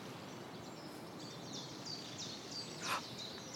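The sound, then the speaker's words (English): Two or three mistle thrushes chasing each other in a territorial fight give a string of short, dry rattling calls in quick succession, faint over a steady outdoor hiss, with one sharper rustling burst near the end. “Can you hear this? There's a couple of mizzle thrushes.”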